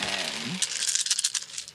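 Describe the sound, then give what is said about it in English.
A handful of dice rattle and clatter across a hard tabletop as a player rerolls failed dice, a quick burst of overlapping clicks that fades out over about a second, fairly quiet. “I will also use my 4 to reroll my failures. I really should have brought my dice box.”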